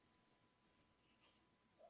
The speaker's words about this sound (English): You guys are just going to hear a weird chirping sound in the background. You're just going to have to deal with it. It is Loki.